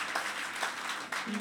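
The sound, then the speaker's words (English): A crowd claps for Jesus together in a steady, dense wash of applause that swells slightly in waves, with a faint voice beginning to hum or speak just at the end. “I thought you'd clap for Jesus.”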